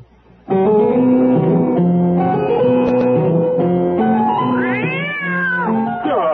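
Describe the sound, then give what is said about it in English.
A cat meows loudly and at length, a drawn-out, wavering yowl that rises and falls in pitch for several seconds, with no talking over it. “Oh, I'm sorry, kitty.”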